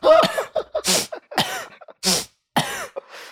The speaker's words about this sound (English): Give me a moment here. In and out. Oh. That's how I breathe now.